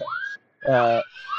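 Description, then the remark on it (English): Kids scream at a softball game after somebody got a hit: loud, high-pitched shrieks in short bursts, one rising wail, then a strong sustained yell, with more shouting trailing off behind. “somebody got a hit. And this is through a softball, so they're going to scream for a while.”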